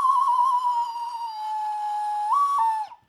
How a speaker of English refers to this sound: Classic death whistles, guys. Ow. There's like dust in it.